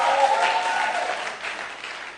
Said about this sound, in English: I want you to clap for yourself. You are brilliant students.